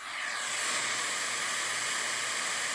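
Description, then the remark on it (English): A steady, unbroken wash of brown noise plays from a sleep app on a phone, a smooth constant static hiss of many frequencies played together, fading in quickly and then holding an even loudness, with no voices. “Yeah, this particular one's brown noise, but essentially it's white noise, which is a whole bunch of frequencies played at the same time together.”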